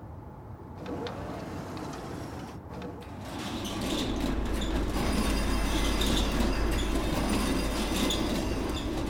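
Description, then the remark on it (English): The huge inner door of Last Respite grinds as it rolls open, a deep rattling rumble swelling louder partway through, with scraping metallic squeals riding on top, continuous, the ground itself rattling. “The earth itself rattled as the huge inner door of Last Respite parted before Pastor Ethan Cutter.”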